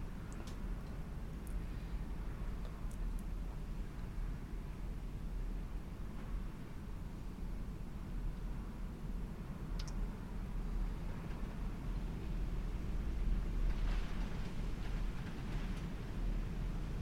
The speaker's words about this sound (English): So I'm hoping you can hear the sound of wind outside. I'm currently recording this commentary. It's the UK's experiencing one of the worst storms in years. It's quite brutal earlier.